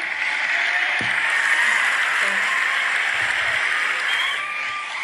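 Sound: applause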